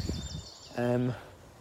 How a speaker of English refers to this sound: There's those building noises, competing with the birdsong.